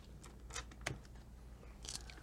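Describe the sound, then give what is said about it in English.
A rattling clatter of many dice tumbling together, with bursts of sharp clicks around a stronger central knock and a final scatter, all fairly faint with no voices. “That was a lot of dice.”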